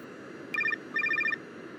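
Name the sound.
cell phone ringing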